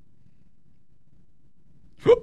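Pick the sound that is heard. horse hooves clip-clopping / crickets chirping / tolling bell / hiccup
hiccup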